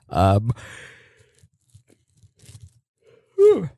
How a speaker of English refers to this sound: Excuse me, I yawned. I'm boring myself